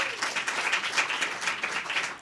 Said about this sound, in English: how many think it's won by sound of applause? How many think it's number two from sound of applause?